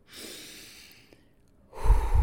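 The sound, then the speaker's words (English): A single deep breath: a long, airy inhale, a brief pause, then a louder, heavier exhale rushing out. No one speaks. “We are starting off 2024 with a deep breath. And by a deep breath, I think I mean a lot of deep breaths.”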